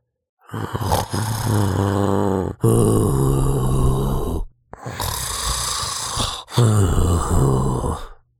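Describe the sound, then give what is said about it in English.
Loud, deep snoring of the big bad wolf from Little Red Riding Hood, asleep in bed in grandmother's house: four long rumbling breaths, each a drawn-out throaty snore with brief pauses between, heavy, with no talking. “A hunter heard the snores and thought it was a bit strange.”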